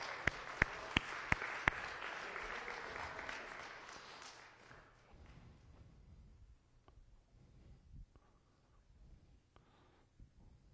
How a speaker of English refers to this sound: Well, again, happy Easter. I think we should clap our hands. It's Easter.